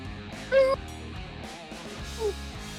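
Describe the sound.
A voice imitates a dire wolf howl, but the sound cuts out, leaving only two short, clipped bursts: a steady mid-pitched note followed by a briefer, slightly sliding whine, sounding like small pup howls over a faint background hum.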